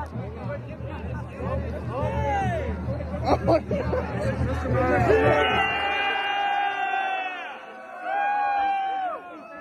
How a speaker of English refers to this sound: And they're all cheering like crazy for it. They love it. They can't get enough.